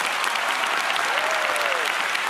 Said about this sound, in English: I want to give you a pretty resounding round of applause for getting a second job to knock out the debt.